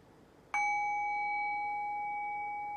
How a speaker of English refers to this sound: And so there was this silence prior to ringing the bell, right? Where did that silence go when I rang the bell?